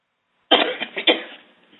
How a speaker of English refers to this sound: Just take another deep cough and cough them out.